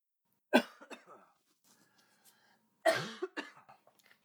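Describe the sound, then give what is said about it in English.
Two loud bursts of harsh coughing about two seconds apart, each a sharp hack followed by a few smaller rattling coughs, with quiet gaps in between and no talking. “Jesus Christ, I'm ready for this cough to go away.”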